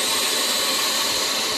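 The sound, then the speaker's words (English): A steady, loud mechanical whir with a bright hissing edge from a chamber vacuum sealer with its lid closed, pumping the air out over about a minute, running evenly throughout with no voices. “I'll close the lid. It's going to start doing its thing. It takes about a minute.”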